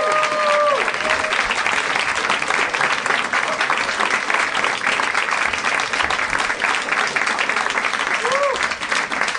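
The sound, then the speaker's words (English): Sustained audience applause, a dense steady roar of many hands clapping for the full length with no break, joined by a few brief whoops and cheers near the start and end. “That was lovely applause, and it made me feel 8 times more self-estimatious.”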